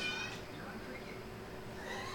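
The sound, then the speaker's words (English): A female cat lets out a short, fairly faint meow over steady low background noise, with another brief mewing sound near the end. “I've never heard her meow until you started bitching about her.”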